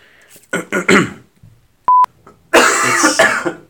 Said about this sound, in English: Sorry, I had to cough. Sorry, I'm going to have to cut all this out of the podcast for me coughing.